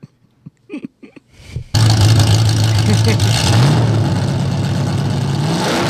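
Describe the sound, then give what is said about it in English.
After a few brief voice-like sounds, a dirt track race car engine roars loudly, holding a throaty rumble and revving higher midway before settling into a steady, raw drone. “Drive that dirt car in here”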